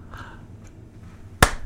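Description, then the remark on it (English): After a stretch of quiet low background hum, a couple of sharp, loud hand claps burst out at the very end, as if one audience member starts clapping. “Oh, I got a clap for that one.”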